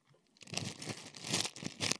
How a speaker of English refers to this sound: Okay, so I've got my jar, and it's got the warm water in, and I've got my sandwich bag, and I'm putting some ice cubes in it.